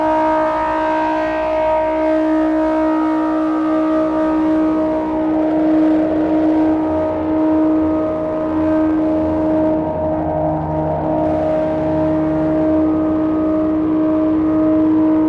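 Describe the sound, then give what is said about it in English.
A sustained modular synthesizer subharmonic drone, using a Rampage module and mixed through an MC3A, with steady tonal bands layered over a low rumbling undertone, holding a calm, unchanging texture at moderate loudness for the whole stretch with no voices. “I think this is a nice drone.”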